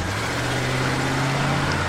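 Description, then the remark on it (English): A car engine idles with a steady, low growling rumble, continuous for a couple of seconds with no voices. “Here come two sounds, car and a tiger.”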